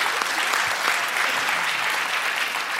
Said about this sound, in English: Congratulations. Give him a round of applause, man. That's dope.